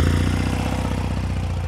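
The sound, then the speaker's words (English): A motorcycle engine idles with a steady, loud, low rumble and rapid mechanical pulsing, holding an even pace throughout with no voices. “Now, let's get this thing fired up.”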